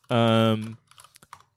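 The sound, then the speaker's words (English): A short, loud voiced tone is followed by a handful of quick, light keystrokes clicking on a computer keyboard as someone types George Clooney into a Google search, irregular and fading out within a second. “Google autocomplete, as soon as I typed George Clooney and then started typing Jewel, it was George Clooney, Julia Roberts, new movie 2022.”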